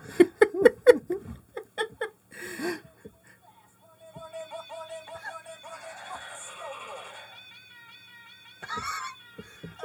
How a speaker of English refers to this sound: You haven't heard … until you've heard it performed by cats.